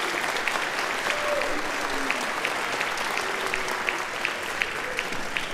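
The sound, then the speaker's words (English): Steady audience applause at a school concert, for teachers, staff and parent volunteers, fills the space: a dense crackle of many hands clapping at once, sustained at an even level throughout with a faint murmur of voices underneath. “Can we please give them a quick round of applause for all their support?”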